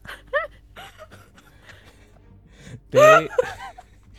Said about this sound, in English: after you gasp.